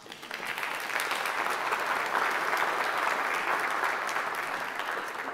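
An audience applauds steadily, with dense, sustained clapping that holds at an even loudness for several seconds, a broad crackling texture of many hands with no voices standing out.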